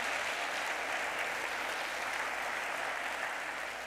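An audience claps together in a steady, dense burst of applause, many hands patting at once with an even, sustained loudness and no voices standing out.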